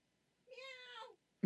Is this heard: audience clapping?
no